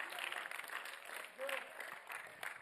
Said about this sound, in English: I said I was going to say it even if you didn't clap. So just so you know, I appreciate the claps, but it moves me.